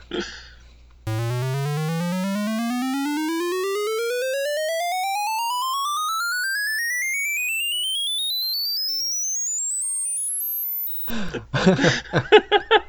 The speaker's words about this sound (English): Here's an example of a one square channel, just kind of showing you the range from all the way from the lowest possible pitch